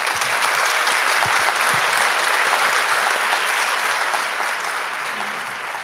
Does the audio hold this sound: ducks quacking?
no